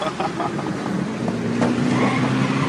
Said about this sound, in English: Sometimes our cars get so crazy, they even do the little stunts. Oh my God!